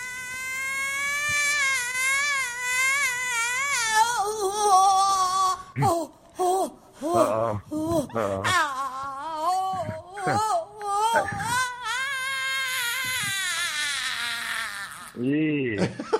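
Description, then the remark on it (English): a singer's recorded reaction to the presidential election: a high, sustained vocal wail with wavering, sliding pitch, breaking into sharp cries and screams after a few seconds, with brief gaps between outbursts before a final shriek. “Was it singing, yelling, screaming all at once, which all sounded like the same thing from her?”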